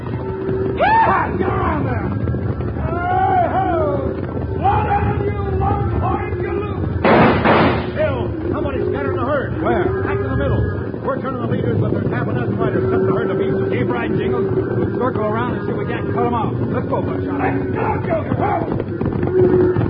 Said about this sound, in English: Wild Bill Hickok and Jingles are surprised by a sudden stampede started by a volley of shots. With the trail boss Scotty, they swing their horses in front of the galloping herd, hoping to turn it before they're trampled under the thundering hooves.